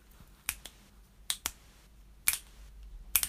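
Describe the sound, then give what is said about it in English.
Several sharp finger snaps, made with one hand, ring out crisp, some in quick pairs, separated by short quiet gaps. Nobody speaks. “Maybe clicking with one hand and scooping noodles into their mouth with the other.”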